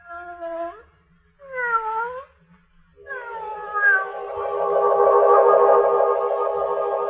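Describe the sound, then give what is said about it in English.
A yellow-eyed cat belonging to Lugos, watching from a doorway, meows twice in short cries, then lets out a long, drawn-out wavering yowl that swells louder and holds steady to the end, with no talking. “The music, and the cat with the yellow eyes watching from the doorway, like death.”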